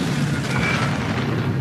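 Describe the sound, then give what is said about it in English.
An F-111 jet fighter bombs a 4,000-tonne vessel about 140 kilometres off the New South Wales south coast, Australia, in March 2006. The explosion rolls on as a dense, roaring rumble, loud and steady for under two seconds with deep low-end weight and a hissing upper layer, with no voices. “An F-111 jet fighter lined up the vessel and bombed it.”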